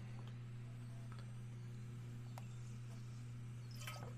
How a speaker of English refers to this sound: Oh, that's good water.